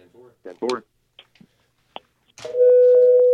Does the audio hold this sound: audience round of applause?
no